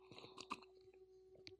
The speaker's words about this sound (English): Well, before I get into my update, let's have another sip of that Van Loon's Dutch Treat. Van Loon's Dutch Treat, so smooth and delicious.